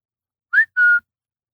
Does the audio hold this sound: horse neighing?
no